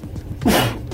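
A man sneezes once near the middle, sharp and loud, with a breathy rush of noise before things settle back to quiet.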